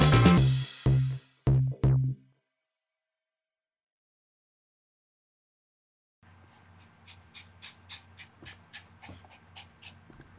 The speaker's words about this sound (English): Can you hear my dog breathing? A little bit. I was wondering what that was. I was like, is somebody like sliding something? No, it's my dog just being chronically out of breath. It's not my dog. It's my parents' dog. She's small and weak